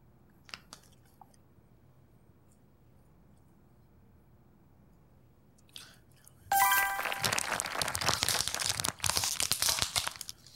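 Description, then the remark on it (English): Crunchy chewing on tacos: after a long quiet stretch with a few faint clicks, loud, dense crunching and crinkling bursts in and continues steadily to the end, with no one talking. “If I sat here until the next time I eat, yeah, like if we like sat down every time we were hungry and filmed us eating tacos for the rest of our life.”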